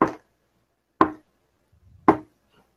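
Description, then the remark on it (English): Three sharp, solid knocks land about a second apart, each one crisp and quickly fading into silence, with a faint low rustle just before the last. “I hear the knock one last time.”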